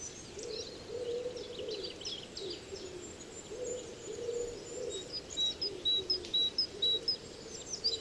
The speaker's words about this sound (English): The artificial birds become harder to distinguish from the real. We realize they're dominating. With the golden light of the sun, real birds return as the chorus fades.